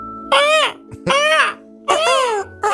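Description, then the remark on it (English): A voice imitates a seagull cry: three loud, high, wailing calls, each bending upward and then sliding down in pitch, with short gaps between them and a fourth just starting at the end. “No, that's not a seagull, dummy.”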